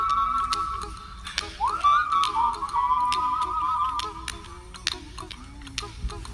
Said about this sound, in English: Good tune, huh? Can you whistle this one? No? Try it.